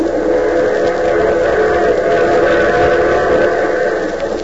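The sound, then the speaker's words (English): A steady, loud train sound fills the scene, a continuous rumbling roar with sustained whistle-like tones held over it for several seconds, with no voices. “But first to a compartment on the train where we find Mr. Ace alone.”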